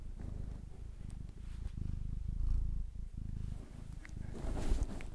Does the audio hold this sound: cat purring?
yes